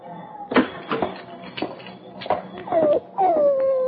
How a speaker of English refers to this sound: How are you, boy? You want to go home? Hoppy, is this the dog?